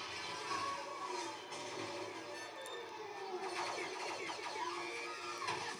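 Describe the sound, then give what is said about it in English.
The Star Wars droid R2-D2's classic electronic scream: high, warbling squeals that swoop up and down in pitch, rising over a dense, steady wash of noise and growing more frantic toward the end. “Excellent classic R2 scream there.”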